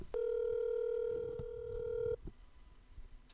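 A loud, steady telephone dial tone hums continuously for about two seconds, then cuts off abruptly, leaving only faint background noise. No one speaks.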